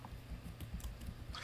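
Soft, scattered clicks of someone typing on a computer keyboard, a few quick keystrokes spaced irregularly and quiet, with no voices.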